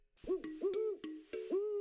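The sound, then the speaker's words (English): A voice imitates an owl, a character named Owly, with a quick run of about five loud hoots, each one swooping in pitch, heard alone with no other talk. “Owly is an owl, and he told me to do an episode on owls because owls have amazing superpowers.”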